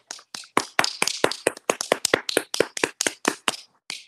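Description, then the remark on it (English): Steady, brisk hand clapping for the moms, around twenty sharp claps in a quick even rhythm, loud and crisp with no one talking over it. “Let's have a clap for the moms.”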